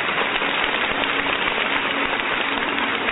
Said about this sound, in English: Let us clap to the Lord. Bwana makofi.